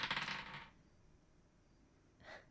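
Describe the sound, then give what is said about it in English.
Dice are rolled for a perception check, clattering and tumbling across a hard tabletop in a quick rattling burst, then going quiet before one faint final tap about two seconds later. Nobody speaks. “Come on, dice.”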